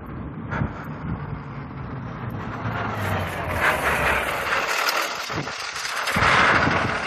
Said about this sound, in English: Ripley thinks the school bus is coming for us.